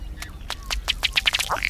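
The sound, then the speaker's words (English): A male ruddy duck's bubbling display, made as he strikes his inflated neck and chest with his bill, forcing air through the feathers so the water bubbles: a series of dry, ticking taps that quicken into a rapid patter and end in a short belch-like croak, fairly clear over faint background rumble. “This strange sound is a male ruddy duck performing his bubbling display.”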